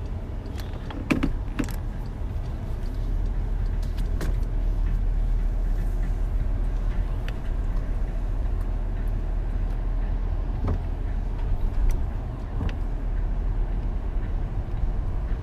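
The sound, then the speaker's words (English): The engine of an SS car rumbles steadily at a low, constant drone for the whole stretch, with scattered small clicks and rattles on top and no one talking. “Crazy car. That's the SS.”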